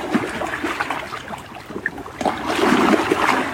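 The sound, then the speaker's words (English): Water flows and trickles steadily, a bubbling, splashing wash that swells louder toward the end, with no voices. “Just taking in the magic of water and light.”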